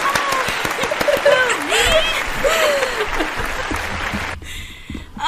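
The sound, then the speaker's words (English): An inserted applause sound effect: a crowd applauds with dense, steady clapping, mixed with cheering voices and a few whoops, for about four seconds before the sound cuts off abruptly. “Insert clap noise here.”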